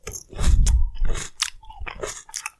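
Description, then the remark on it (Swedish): Wet open-mouthed chewing with smacking and crunching bites, repeated in an uneven rhythm for a couple of seconds, fairly loud and with no talking. “Så ska vi se om det smaskar eller inte.”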